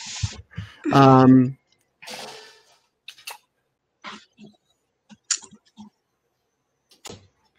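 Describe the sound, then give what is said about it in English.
A short voice is followed by scattered clicks and soft thuds, like a handle turning and the door to a room being shut, with quiet pauses between the bumps. “can you close the door to this room?”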